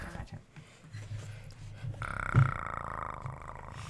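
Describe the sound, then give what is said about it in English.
A person imitates a purr with their voice: a low, rough rumbling that swells halfway through into a steadier, buzzier drone, with a brief louder burst before it continues to the end. “They do purr. They purr.”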